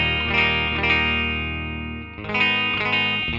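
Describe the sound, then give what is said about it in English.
A clean electric guitar, a Jazzmaster, rings out a strummed chord that sustains and slowly fades, then a second chord is struck with a few bright picked notes on top. No one speaks. “I'm gonna play the Riot, but here's my clean sound for the Jazzmaster.”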